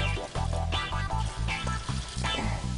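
A little splash of water hits a hot frying pan with carrots cooking in it, setting off a loud, steady sizzle with repeated hissing bursts that flare and settle over a few seconds, with no talking.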